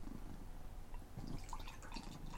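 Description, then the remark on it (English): A very dark beer glugs from a 12-ounce bottle into a small tasting glass in a steady pour, with a low gurgling rumble and bright fizzing splashes building over a couple of seconds. “This little 12-ounce bottle and the pour.”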